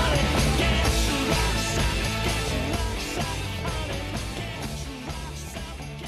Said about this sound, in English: All right, let's play this song.